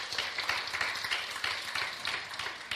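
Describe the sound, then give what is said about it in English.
An audience claps their hands in praise to God, a dense, steady wash of many overlapping claps that holds at an even, fairly loud level throughout, with no voices standing out. “Come give God a hand clap of praise.”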